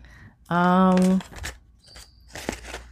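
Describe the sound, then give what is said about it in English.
Paper crinkles and rustles in short bursts as it is folded upon itself and creased, with a loud sustained vocal note from a person just before the crisp handling sounds. “Now we're gonna use the paper to actually fold upon itself.”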